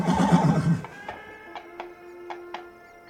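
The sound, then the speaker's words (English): A horse gives one loud, wavering whinny, followed by five sharp hoof clops at uneven intervals over a faint, steady hum. No one speaks. “He looks dejectedly down and like gets down off his horse, takes its hoof in its hand, and they walk out of town looking for a place a little bit more open-minded.”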